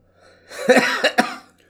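A man coughs in a quick burst of three harsh, close coughs with breathy noise between them, loud and isolated with no talking.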